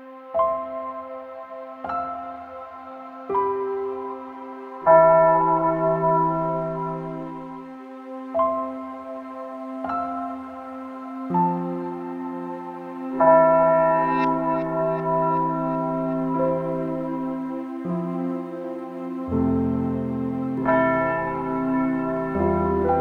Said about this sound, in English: And I set my mind on ringing that bell, and I just kind of clung to that hope. And yeah, it was awesome to get to ring that bell and know that I was done.